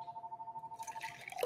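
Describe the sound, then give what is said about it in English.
A bar's landline telephone rings with a steady, rapidly pulsing electronic trill, fairly quiet, as clinking, rustling background noise builds toward the end. “The phone is ringing, but we're not open.”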